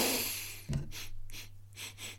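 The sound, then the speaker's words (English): A soft bump against the microphone, then a series of four or five quick, airy sniffs as someone smells the hand soap on their own freshly washed hand held at the mic. No talking. “Here comes the sniff. The hand is approaching the microphone, and here comes my nose to sniff.”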